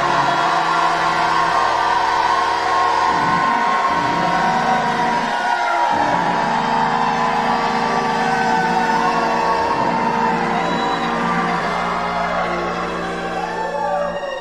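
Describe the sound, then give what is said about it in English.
A crowd erupts in sustained shouting, whooping and cheering after a preacher calls on them to jump up and shout, a dense wall of overlapping voices that stays loud and energetic throughout, with occasional higher yells cutting through. “Somebody jump up and shout like you never shouted in your life.”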